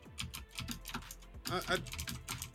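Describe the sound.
Rapid typing on a computer keyboard as someone posts a tweet about a one-year anniversary, a steady stream of crisp key clicks with a brief flurry in the middle, over a faint low hum and murmuring voice.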